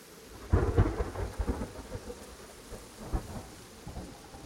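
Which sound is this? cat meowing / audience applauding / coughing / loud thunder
loud thunder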